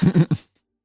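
A person gives a quick, voiced yawn, fairly loud, a short drawn-out vocal sigh breaking into a couple of pulses before trailing off into silence.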